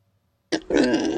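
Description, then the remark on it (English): A pig grunt sound effect from a cheap sound effect app, played through Bluetooth, sounds after a moment of silence: a sharp onset followed by a rough, guttural, snorting grunt lasting under a second, fairly loud and alone. “So we have like a pig.”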